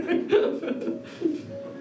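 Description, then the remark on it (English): A bird coos in low, throaty, rolling notes, several soft bursts running together over about two seconds. “Bird, sir.”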